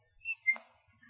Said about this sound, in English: I whistle at the conga dance. Small blast of appreciation, yes, like this.